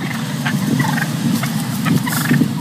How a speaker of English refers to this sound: Those are residents of Brookline in Foxborough, Massachusetts, you just heard. This menace that's plaguing the Boston metro area, wild turkeys.